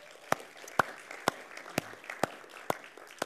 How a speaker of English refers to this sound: You guys do it. Let's give them a clap.